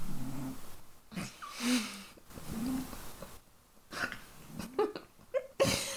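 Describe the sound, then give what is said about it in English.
A cat snores softly, with uneven, raspy breaths and snuffly wheezes repeating irregularly over several seconds, with no one talking. “the cat's like... The snoring is very distracting.”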